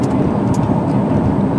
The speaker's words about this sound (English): There's lots of traffic in there, too. Yeah. But that's also just a city street.